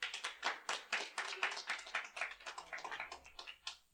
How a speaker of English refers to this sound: All right, applause. Yes? Applause, no.